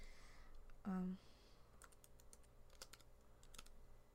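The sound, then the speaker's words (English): Light, irregular keyboard typing clicks in quick bursts as a plural noun is typed in, with a brief low vocal sound near the start and quiet room hum underneath. “Maybe you should say it out loud as you're typing it.”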